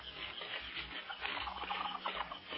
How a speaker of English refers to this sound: The sky is growing light in the east as Clint and Kinka approach the sleeping village, and the jungle birds and monkeys noisily greet the strangers.